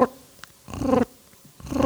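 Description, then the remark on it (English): Someone imitates by voice the soft purr of a turkey friction call, making three short, rolling, fluttery bursts separated by brief pauses, with no talking. “Where with the mouth call in, and as he gets closer and closer and closer, it takes a lot of skill, in my opinion, to be able to softly purr on a friction call versus just going.”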